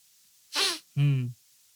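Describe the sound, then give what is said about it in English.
A quick, breathy sniffle through the nose, followed at once by a short, low, voiced nasal sound. Both bursts are brief and fairly loud, with no talking. “That was an interesting sniffle.”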